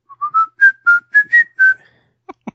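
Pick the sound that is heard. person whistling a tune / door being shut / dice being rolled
person whistling a tune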